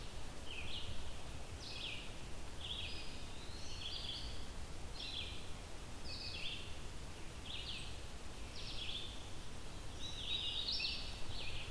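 A vireo sings short, high phrases in a steady series, each separated by a brief pause, over a constant bed of rustling wind noise.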